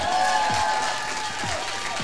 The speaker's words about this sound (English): And now everybody cheers.